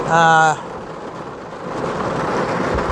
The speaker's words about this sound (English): Good God! This rain is something else. Oh my God. I would get out of the car, but I'm too fucking scared to.